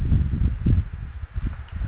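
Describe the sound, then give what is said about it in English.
A man types on a keyboard instead of speaking during a KWOD Radio call-in show: an irregular run of muffled, low-pitched keystroke taps, fairly loud and steady, with no voices. “And of course, instead of saying anything, he's typing.”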